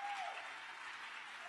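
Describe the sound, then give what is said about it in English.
Steady, dense applause from an audience welcoming a woman guest for an interview, a continuous bright wash of many hands clapping at an even level throughout, with no talking over it. “Yeah, give her a big hand,”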